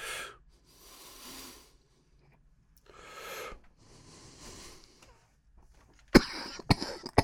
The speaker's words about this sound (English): is it the introduction of those botanical terpenes, which I grant you are giving the fabulous flavor, but are those contributing to the fact that this really makes me want to cough after every hit? Okay, that one didn't.